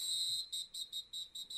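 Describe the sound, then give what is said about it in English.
A shrill, high-pitched whistle sounds from a distance: one sustained blast followed by a quick series of about six short, evenly spaced toots. It is fairly faint, with no voices. “But that whistle come through? Is that it's a whistle? It's a distant okay. Whistle.”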